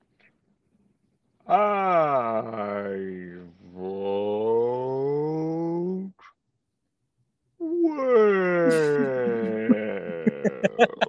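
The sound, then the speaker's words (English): A person imitates a whale call with two long, moaning voiced tones that slide and waver in pitch, separated by a short pause; the second call rises and grows more strained. “I really thought you were doing bullfrog for a second.”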